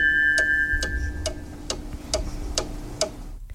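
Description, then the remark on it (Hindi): A radio FM studio clock ticks steadily at about 10:06, about seven crisp, evenly spaced ticks over a faint low hum and a thin steady tone, with no one speaking. “Studio की घड़ी की सुइयां कहती हैं 10:06 और 36 सेकंड हुआ चाहते हैं.”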